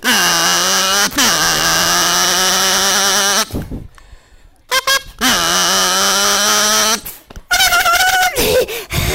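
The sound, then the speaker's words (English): A voice imitates a motorcycle, making loud, sustained buzzing engine revs in several bursts with short pauses between, then a higher wavering squeal of slamming on the brakes near the end. “Nope, it's a motorcycle.”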